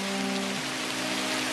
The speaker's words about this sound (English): rain is starting to subside. It's getting less and less. It's almost down to a drizzle.